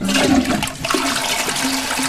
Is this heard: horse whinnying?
no